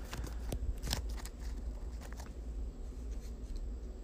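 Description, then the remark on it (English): A deck of cards being shuffled to reset it during a game, heard as scattered soft papery snaps and riffles with brief pauses between them, quiet over a low steady hum and no talking. “Give me 1 second as I shuffle this.”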